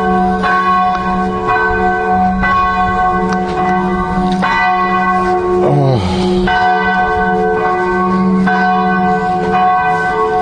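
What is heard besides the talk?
church bells ringing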